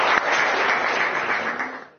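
Audience applause fills the whole two seconds, a dense, steady wash of many hands clapping at once, fairly loud and holding even before fading slightly at the end.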